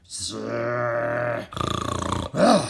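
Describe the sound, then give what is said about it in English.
A voice imitates the wizard Griffith snoring loudly in his room: a drawn-out groaning inhale, then a rattling, fluttering snort and a final rising-and-falling wheeze, all fairly loud. “He was snoring loudly.”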